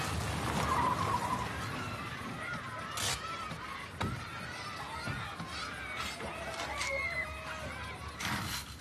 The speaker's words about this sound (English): Children wave and shout at the convoy. Cars hoot as they pass. Everyone knows that the Gift of the Givers has come to find water, a resource as precious as life.